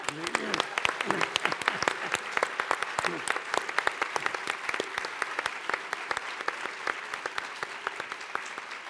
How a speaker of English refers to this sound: And then I think we want to congratulate Madam President again, because she's the first African to be head of state, a woman to be head of state, and I think you deserve a clap.